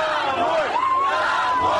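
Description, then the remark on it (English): A large, unarmed crowd in the main square of the southern city of Kherson chants "Go home" and shouts together at Russian armored vehicles in a loud, continuous roar, with a rising and falling collective vocal tone carrying over the dense mass of voices. “Unarmed crowds chanting "Go home" managed to turn back Russian armored vehicles in the main square of the southern city of Kherson.”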